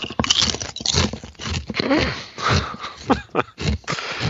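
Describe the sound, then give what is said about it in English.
Loud crunching of potato chips, used as a greeting, in a rapid irregular series of crisp snaps and crackles with brief pauses between bites, and no talking. “He's actually going to be conducting his entire recap through Morse code potato chip crunching.”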